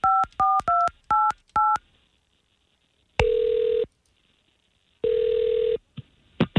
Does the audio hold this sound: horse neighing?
no